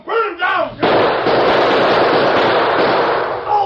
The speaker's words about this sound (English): But he kept on shooting, slowly, deliberately, making sure every bullet found its mark.